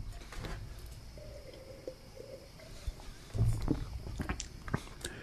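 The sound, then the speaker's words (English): A quiet sip of beer: soft wet mouth noises, then a brief louder slurp and swallow partway through, with faint clicks over a steady low hum and no talking. “And then let me take another sip here and I'll talk about what I do like about this beer.”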